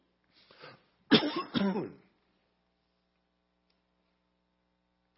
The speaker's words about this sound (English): I feel like I have a cough. You know I have a cough.